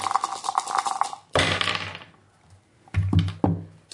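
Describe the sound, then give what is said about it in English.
Dice rattle and tumble onto a hard tabletop: a short clattering shake, then a loud clack and skittering bounces, followed by a couple of sharper clicks as they settle, with no talking. “They will have some dice for that.”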